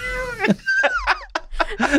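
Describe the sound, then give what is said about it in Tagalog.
A person's voice imitates a cat, letting out a quick string of loud meows with rising and falling pitch, one after another for about two seconds. “Aso, ganyan. Meow,”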